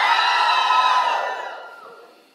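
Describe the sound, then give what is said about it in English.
On a count of three, a crowd of women scream together in a loud, sustained burst of high-pitched yelling that holds steady for over a second, then gradually fades away. “I definitely still heard some women screaming in that one. All right, ladies, one, two, three.”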